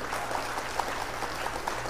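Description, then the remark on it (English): A canned applause sound effect: dense, steady clapping from a crowd, sustained at an even moderate level for the full two seconds with no voices over it. “Hold on, let me hit Cheryl with the claps for Cheryl.”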